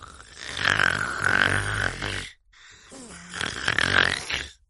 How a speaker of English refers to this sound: He snores all of the time. And the sound of his snoring is as loud as a thunderstorm.